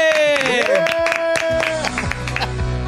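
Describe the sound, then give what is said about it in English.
A loud burst of clapping and cheering for a producer, sharp claps scattered across a bright, tonal sweep of horn-like or whistling sounds, the whole thing lasting about three seconds. “clap your hands for producer”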